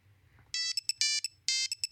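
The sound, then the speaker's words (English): An old-school Nokia mobile phone ringtone plays a quick melody of bright, beeping electronic notes in a bouncy rhythm, loud, after a brief low murmur, with no talking. “That's like the Nokia old school ringtone, isn't it?”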